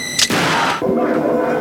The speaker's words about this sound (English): We heard shots. What happened?